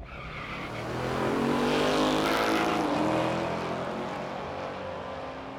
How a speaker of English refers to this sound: So this is when the engine is running at 105%. Igniting the afterburner more than doubles this. Sitting on the start line with the engine revving, you press that button and you're gone, whether you like it or not.